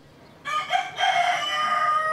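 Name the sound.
rooster crowing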